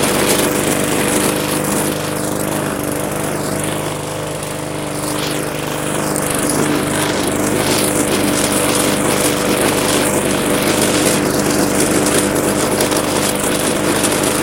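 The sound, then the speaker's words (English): A lawn mower engine drones steadily and loudly while mowing slightly wet grass in a yard, its buzzing hum holding constant throughout with slight wavering as it cuts, and no voices. “Looking like about probably a good 10 more minutes of mowing here.”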